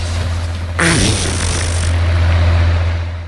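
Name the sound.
fart sound effect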